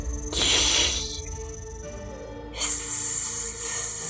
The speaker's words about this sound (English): Rattler's no joke.